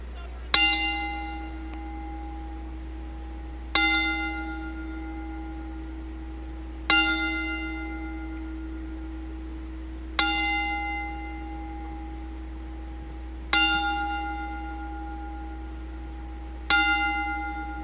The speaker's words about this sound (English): we toll the bell 10 times.